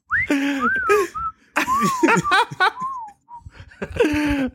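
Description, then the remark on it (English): A person whistles a goofy, warbling tune: several sliding, wavering notes in short phrases, interrupted by bursts of laughter between them. “I'm trying to think of a more stupid whistle I could do. The Joel Santana whistle.”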